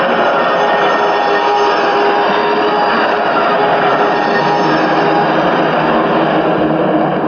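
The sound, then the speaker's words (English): A subway train roars past in a tunnel about 2 feet away, a loud, steady rumbling wash with faint humming tones running through it, holding at full strength throughout with no voices heard. “We're like 2 feet from that train.”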